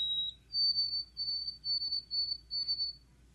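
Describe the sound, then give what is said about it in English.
A white-throated sparrow sings clear, pure whistled notes: a short steady opening note, then a slightly higher series of repeated, evenly broken phrases, over a soft low rumble with no voices. “And they with everything flocking around, the white-throated sparrow, it's got this wonderful little song.”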